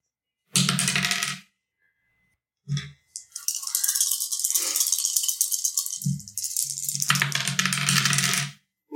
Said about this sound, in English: I hear some sick rolls. There's a lot of dice.